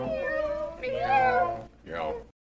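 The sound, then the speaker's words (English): A person mimics a cat with a drawn-out, wavering meow and then a shorter second one, fairly loud, followed by a sudden silence. “Get your cat hats today. Yay! Meow.”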